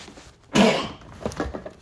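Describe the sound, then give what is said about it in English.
A single loud sneeze bursts out after a short quiet lead-in, then trails off into breathy exhales and a few small shuffling noises, with no talking. “I'm gonna sneeze. Hold up.”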